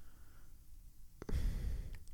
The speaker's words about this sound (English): I just hear you breathing. I'm stuffy this week.